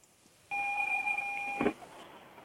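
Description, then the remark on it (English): A single steady electronic warning tone from a car being driven over snow sounds for about a second, fairly loud, ending with a soft thud, with no one talking. “Never mind if there was beeping just now. That was apparently my car telling me that you're not supposed to drive over snow.”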